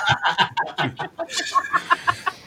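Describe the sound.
A human voice imitates an owl, giving a quick, bouncy series of hooting calls, about a dozen short bursts in a row, fairly loud, with no other talking.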